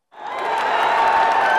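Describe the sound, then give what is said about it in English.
A crowd of fans cheers and claps, the noise swelling quickly from silence into a loud, sustained roar of applause and shouts that holds steady to the end. “Oh, those fans keep cheering”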